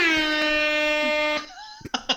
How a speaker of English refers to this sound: No, I'm just... train horn.